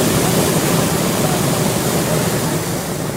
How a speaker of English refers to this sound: You can see there the water being shot 50 feet in the air. This happened just after 1:30 in the morning in Spring Valley. Police say the driver rolled his car into a strip mall on Hamishaw Road where he sheared off the valve system.